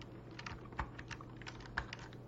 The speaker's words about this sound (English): they're asking you if you're eating, if you're typing. I'm chewing gum. I was typing.